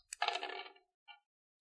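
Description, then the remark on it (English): Dice clatter briefly across a backgammon board in a short rattling burst, followed by a couple of small isolated clicks as they settle, landing on a 6-5. Fairly quiet, with no talking. “wait until the district attorney hears about the district attorney and his crooked dice”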